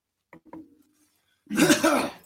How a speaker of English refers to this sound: What are you clearing your throat for? Excitement.